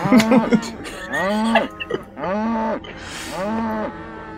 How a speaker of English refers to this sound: All of the oxen moo at you in unison.